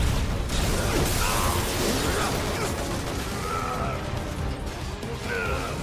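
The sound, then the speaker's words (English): A dense, loud video game battle against sweepers with heavy cannons and laser cannons, as Barrett fires at the laser cannons: steady mechanical clatter, crashes and bursts, laser cannon fire, and short whistling sweeps rising through the din, with no pause in the noise. “These sweepers just don't make it easy with their heavy cannons.”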